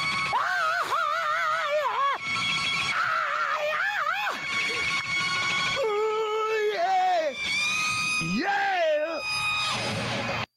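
A man plays a loud, wailing electric guitar solo while another man screams and whoops along without pause, bending pitch up and down in long squealing phrases.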